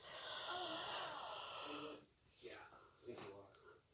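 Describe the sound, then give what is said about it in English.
A big, drawn-out yawn, loud, with a breathy, voiced stretch lasting about two seconds, followed by a few softer exhales and mouth sounds as it trails off. “Oh, big yawn.”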